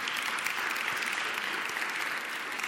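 During a preaching service, an audience claps steadily throughout for two people, a dense, even wash of many hands with no voices rising above it and no clear start or finish.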